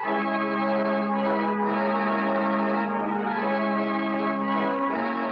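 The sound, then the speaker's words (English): Church bells ring out in a loud, sustained wash of overlapping tones, heavily reverberant and continuous throughout, with no voices present. “This episode, The Bells of St. Peter's.”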